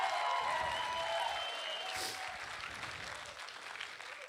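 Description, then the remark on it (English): An audience claps and applauds as praise to the Lord in a dense, steady wash of hand claps, with a few cheers and whistles rising above it before the applause gradually thins out. “If you're going to do it, don't golf clap.”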